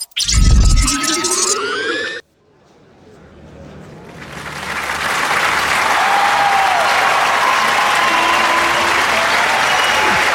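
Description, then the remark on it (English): After a brief burst of bouncy, musical tones and a moment of quiet, an audience's applause for a lecturer at a class swells up and continues steadily, a broad dense clapping. “Thank you so much for the applause.”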